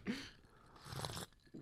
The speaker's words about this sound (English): Whoa, we can't both sip at the same time, bro. We can't sip at the same time, bro. I saw you sipping.